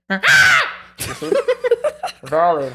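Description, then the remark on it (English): A person imitates an eagle with two loud, shrill, high-pitched screeches, one at the start and one at the end. Short choppy vocal sounds, like laughter or brief talk, fill the gap between them. “I identify myself as an eagle. Make an eagle noise.”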